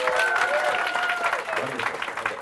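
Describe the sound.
A panel audience claps steadily in answer to a question asked by applause, a dense wash of applause with a few faint whistles and voices mixed in, holding at a fairly even level throughout.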